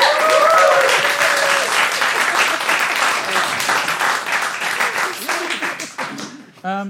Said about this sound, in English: And that brings us to the end of the Nerd Quotient round. A round of applause for both of our teams.